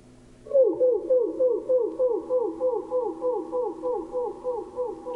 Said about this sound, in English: Here's another clip from a wood thrush, this time slowed down to 1/10 speed so that we can hear the contributions of the two separate voice boxes. So first here goes that left voice box.